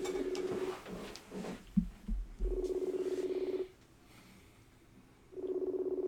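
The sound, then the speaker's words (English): A phone's ringback tone plays over a speakerphone, a steady buzzy mid-pitched tone repeating in roughly one-second bursts separated by longer pauses, with a few soft thumps in between. “I'll put him on speaker.”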